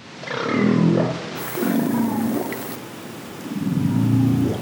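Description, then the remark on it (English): Three low, drawn-out humpback whale whoops echo underwater in a cold, isolated bay in Alaska, one after another, each a deep tonal call sweeping upward in pitch, loud with no voices. “That's called the whoop, and Matthews spent a month in Alaska a while back with a team to figure out just what whoop means.”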